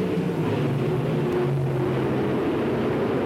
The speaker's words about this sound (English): The cars are lined up. Watch it. Here they go. They'll be off the grid. And the roar. And there they go.